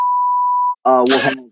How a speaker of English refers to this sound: Large beep right here.